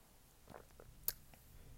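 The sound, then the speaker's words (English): Quiet mouth noises: a short slurping sip of a very dry wine followed by soft swishing as it is swirled in the mouth and one sharp wet click, with no talking. “I'm doing a sip and swirl.”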